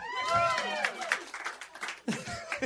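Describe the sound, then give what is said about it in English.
A short burst of audience applause mixed with chuckling and overlapping voices, the clapping rising and thinning over a couple of seconds before voices swell again. “It's the only time that's ever gotten applause.”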